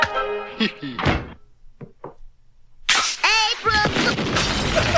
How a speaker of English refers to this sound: That sounded like an explosion at the old Simpson place. Forget it. That's two blocks away. Looks like there's beer coming out of the chimney.